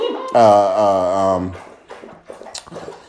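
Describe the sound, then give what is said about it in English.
A dog laps up water, with quick, wet, irregular slurps following a loud sustained tonal sound at the start. “I'm glad my dog decided to come in here and start drinking while we're doing this.”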